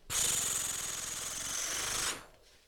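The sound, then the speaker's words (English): A page of the comic book The Invincible Iron Man: The End of Iron Man being turned: one loud, steady, papery rustle that lasts about two seconds and then cuts off abruptly, with no voices. “Shall we? Page, turn, noise.”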